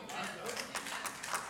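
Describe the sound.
A brief burst of thin, scattered audience clapping, irregular and somewhat subdued, with overlapping claps and indistinct voices murmuring underneath.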